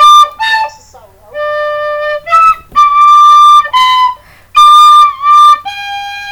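A simple nursery-rhyme melody is whistled in a series of clear, sustained notes stepping up and down, loud, with short gaps between phrases and no talking.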